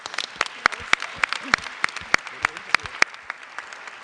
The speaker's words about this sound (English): We are here to enjoy the opening night of San Francisco Ballet's 80th repertory season. And you may applaud.